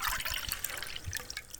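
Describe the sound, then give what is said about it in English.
Chicken broth pours steadily into a pot on top of layered meat and vegetables, a continuous splashing, gurgling stream with bright watery trickles, fairly loud, with no talking. “And finally, we pour the chicken broth on top.”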